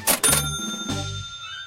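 A cash register's mechanical clatter of two quick clicks, then a bright bell ring that hangs and slowly fades. Loud, with no voices.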